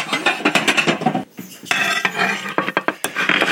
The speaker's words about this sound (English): I prefer a scissor. This is some leftover chicken breast that we had made a few days ago. It was really good. It was chicken parmesan. I'm just cutting up the chicken. I'm using the scissor to cut up the pork.